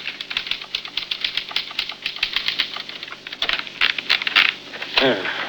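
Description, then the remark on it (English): Rapid, uneven clacking of typewriter keys, fairly loud, with a sharper clunk near the end like the carriage being struck or returned. “You finish the book, get out of bed hurriedly, and sit down at your typewriter.”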